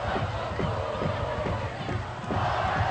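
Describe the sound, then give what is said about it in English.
A large, dense crowd of high school football fans, including a traveling Loveland student section, roars continuously at a rivalry game for the bell, with a steady rhythmic pulse like chanting or stomping running through the loud din. “Yeah, they brought a full crowd tonight, and they're lively.”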